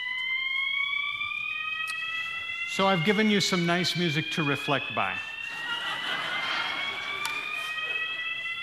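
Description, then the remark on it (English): A building alarm, a false alarm caused by a short downstairs, sounds continuously with steady, high-pitched tones through the entire clip, while a man speaks briefly over it in the middle. “Do reflect for a few minutes, if you would, and I'm sure in a few minutes that they'll be able to shut that alarm off.”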